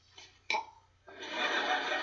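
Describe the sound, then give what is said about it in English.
A baby being burped gives a couple of short, soft burps in quick succession, followed by a longer rough, breathy rumble that fills the rest of the moment. No talking. “Oh, we're having a little contest to see who can burp the fastest.”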